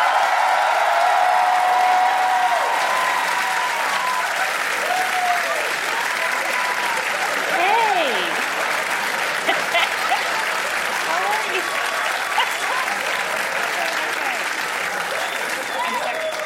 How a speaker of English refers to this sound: And thank you guys all for coming out. Thank you guys. Thanks. I pimped you into an unnecessary applause.